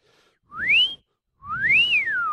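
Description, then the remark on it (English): Someone whistles a snatch of a rock and roll tune: two clear phrases, each sliding up and back down in pitch, separated by a short pause. “A montage, darling, of the old rock and roll whistles.”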